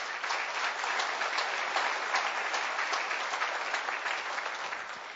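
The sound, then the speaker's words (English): A church audience applauds its volunteers steadily for several seconds, a dense wash of many hands clapping at even loudness, tapering slightly at the very end. “I think we should just applaud those volunteers.”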